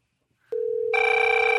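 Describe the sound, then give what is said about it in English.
An electronic telephone ring starts abruptly as a steady tone, then swells into a fuller, buzzy ringing that holds loud and unbroken to the end, with no one talking. “Still ringing on my end here.”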